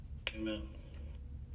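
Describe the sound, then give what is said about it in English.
One crisp finger snap cracks out from the audience during a church sermon, followed by a brief low hum of a voice and a couple of faint, softer clicks in the background. “And I'm sorry, but there ain't no snapping in the church.”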